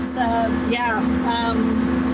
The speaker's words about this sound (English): Flying in like a plane, but we're in a tractor, actually, is what we're doing today. Yes, we're planting some corn.